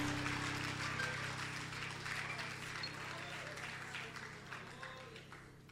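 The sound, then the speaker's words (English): An audience claps for the Lord Jesus in a dense, steady wash of applause that holds at an even level for several seconds, with a low electrical hum running underneath. “Clap for the Lord Jesus.”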